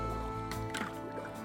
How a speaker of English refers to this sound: This slices through all the circuitry of our anxiety, like a paddle slipping into water.